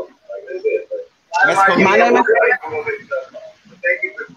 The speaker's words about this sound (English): Can you hear the echo? Yeah, I think you gotta turn the computers down.